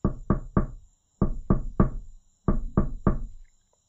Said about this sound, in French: Pauvre Clos, il y avait tellement de monde dans la grande salle et tous chantaient et dansaient autant que le bruit du concert était trop fort et que personne n'entendit Clos frapper à la porte.